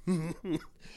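Two quick, throaty coughs, the first slightly longer than the second, followed by a brief quiet breathy tail.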